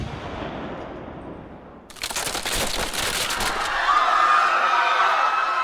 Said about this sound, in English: For my fallen brothers, fire! Langston lit one of the cannons. Should we run or something? It's just going to be a lot of noise. They're just props.